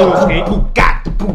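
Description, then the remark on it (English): A corgi named Bowie barks in a quick, uneven run of sharp, loud yaps, with a longer strained bark in the middle and a couple more short ones at the end. “Bowie is barking at us.”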